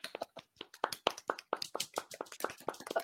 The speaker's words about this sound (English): Fucking golf style, clapping right?